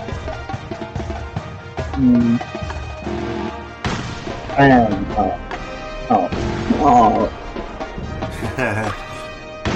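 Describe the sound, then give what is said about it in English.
A cannon sound effect that comes across as repeated dull thumps, like a fist hitting a desk, recurring irregularly throughout while voices talk over it. “Okay, it doesn't exactly sound like a cannon.”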